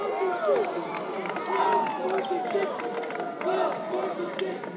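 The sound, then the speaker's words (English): An excited basketball crowd roars and cheers steadily as Bako wins and fans storm the court, with overlapping shouts and voices rising and falling in a dense, loud wash of celebration. “So you can hear the excitement in the crowd.”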